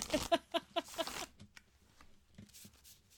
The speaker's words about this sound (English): But not card shuffling. No. I have to like lean back and do it on my lap.